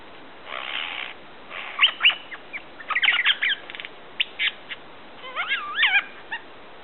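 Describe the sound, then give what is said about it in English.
A superb lyrebird runs through a varied medley of calls mimicking other birds' songs: rasping bursts, sharp chirps, rapid whistled trills and looping warbles, each phrase different, clear with no talking. “It's so wonderful to be walking through those forests and hear the lyrebird practicing his routine of birdsong covers.”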